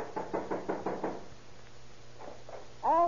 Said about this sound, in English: Better try knocking, Stone. Try it again, louder.